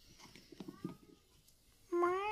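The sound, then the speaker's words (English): A cat lets out one loud, drawn-out meow near the end, after a stretch of faint shuffling and a softer, thin mew. “Cat's like, there's I want some coffee.”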